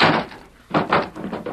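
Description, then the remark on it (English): A wooden cabin door swings shut with a heavy thud, followed by a couple of dull knocks and scrapes as a bar is set across it. No voices. “Inside, you two. Bar the door.”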